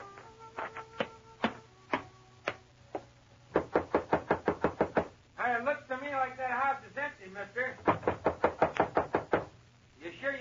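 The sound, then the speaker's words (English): Firm knocking on the wooden front door of a ramshackle, unpainted old frame house on the edge of Golden, in several rapid bursts, broken midway by a long, wavering creak of the door swinging open, then another quick run of knocks. “Hey, that door open by itself?”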